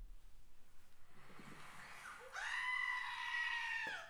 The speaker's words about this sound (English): It's like, you know the typical goat scream? Yeah. Like, you know what? Yeah, the meme, yeah. The meme.